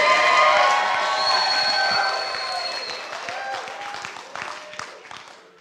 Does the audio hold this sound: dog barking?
no